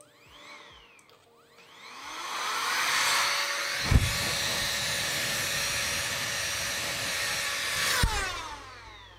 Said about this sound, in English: I bought a compressed air gun.